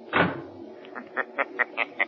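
A door shuts with one solid, low thud, followed by a run of six light, evenly spaced clicks or taps fading off. No one speaks.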